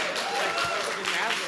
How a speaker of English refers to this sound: An applause break for that somehow.